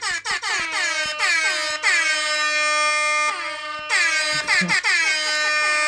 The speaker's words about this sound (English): Okay. That's a lot of air horns.